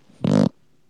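A single loud, buzzy fart lasting about a quarter second, with a low rumbling tone and raspy texture, standing alone against quiet background.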